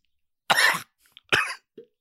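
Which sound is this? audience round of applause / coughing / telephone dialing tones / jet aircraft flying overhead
coughing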